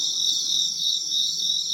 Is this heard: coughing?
no